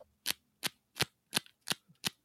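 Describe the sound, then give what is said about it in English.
Six crisp, papery card snaps at a slow, steady pace, each one distinct, as playing cards are flipped one at a time in the hand, with no talking. “Because I'm just because I can't do that thing where they like flip through the cards real fast, like that.”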